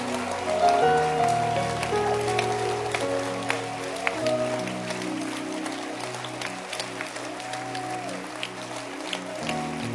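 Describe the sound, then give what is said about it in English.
Sustained applause from a large audience celebrating fathers on Father's Day fills the space, a dense wash of clapping lasting throughout with steady intensity, accompanied by sustained musical tones underneath. “Oh, don't stop clapping.”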